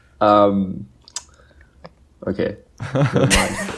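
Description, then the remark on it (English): Someone chewing on a donut, with soft wet smacks and a few sharp mouth clicks, while voices murmur and talk around it. “Sorry, listeners, if all you can hear is … just chewing on his donut.”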